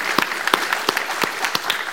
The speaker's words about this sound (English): Would you give him another round of applause, how the Lord has used them today.